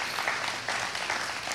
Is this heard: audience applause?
yes